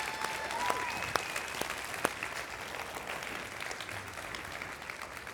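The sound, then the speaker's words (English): An audience applauds steadily for several seconds, giving God a round of applause for the new facility opening at the Winter Haven campus. It is a dense wash of clapping with a few sharper claps standing out and a brief whistle early on. Nobody speaks over it. “Can we give God a round of applause for that?”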